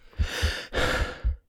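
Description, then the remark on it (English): Heavy panting of a person just woken from a nightmare in a dark, empty room, quick ragged pulls, a few hurried breaths in and out in a row, loud and breathy against otherwise silence. “Bloodshot eyes darted about my empty room, squelched In darkness, there was only silence, save for my panting breaths.”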